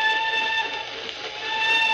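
vehicle, train whistle blowing

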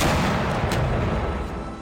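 impact, cannon firing

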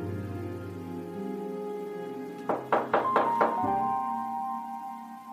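impact, knocking on a door

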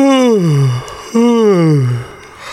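human body sound, a person yawning

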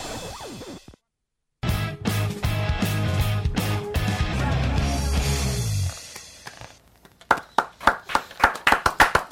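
crowd, applause

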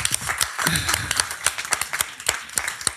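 crowd, applause

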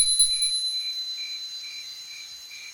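signal or alarm, hand bell ringing

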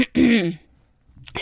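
human body sound, throat clearing

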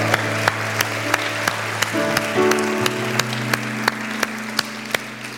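crowd, audience applause

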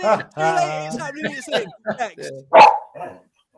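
animal, dog barking and whining

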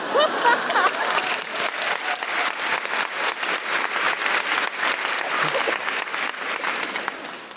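crowd, audience applause

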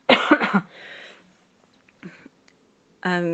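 human body sound, tickly cough

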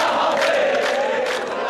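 crowd, crowd chanting

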